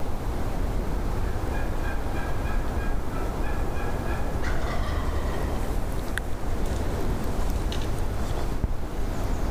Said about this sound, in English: after that turkey gobbled so close to us